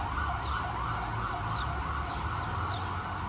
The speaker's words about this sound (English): I'm just waiting on the siren to pass. This is a frequent issue in New York City, by the way.